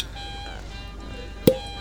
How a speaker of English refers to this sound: It's got a good cork pop.